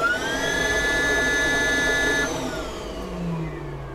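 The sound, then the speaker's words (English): A steady electric whine with several high tonal harmonics holds, then cuts off and a lower hum sweeps downward as a lightweight electric car fitted with Lotus Elise shock absorbers is shut down by pressing a button, leaving a fading low drone. “Shall I shut down now? Yeah, let's hear it go down. I like the sound.”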